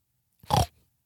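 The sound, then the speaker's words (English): A single short, nasal oink made by a human voice imitating a pig, fairly loud, a quick grunting burst lasting about a quarter second with silence around it. “Why did we say pigs oink? I guess they squeal.”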